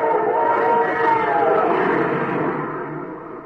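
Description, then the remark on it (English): A Super Chief passenger train rushes past, its steady rumble topped by a long, sustained chord-like whistle that holds for several seconds before easing off slightly at the end. “That's a super chief. But there ain't any railroad tracks out in the desert.”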